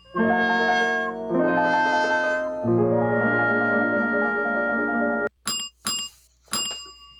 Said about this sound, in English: For February 8th, and we're back, and we got a bell jingle now. Very excited about it. Uber exciting.